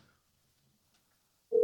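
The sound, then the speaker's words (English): Near silence with a faint low rumble, then a loud, steady ringing tone of an outgoing phone call to call someone back begins abruptly right at the end, cut off after a brief moment. “I'll let you answer. You just called. You can't not answer now.”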